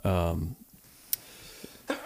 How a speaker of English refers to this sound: Bless you, sir. Thank you. We got that in high def. High definition sneezes. That's what we need right now.